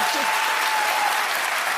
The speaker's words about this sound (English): You can clap for the ACLU.